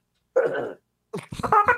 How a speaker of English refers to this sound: Did he just burp into his hand? Yeah, he got the instrument ready.